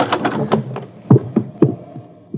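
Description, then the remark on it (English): A house's front door being opened without knocking, with a quick series of sharp wooden clunks and latch rattles, a few louder thumps standing out near the end. No one speaks. “The front door was closest. I didn't bother knocking.”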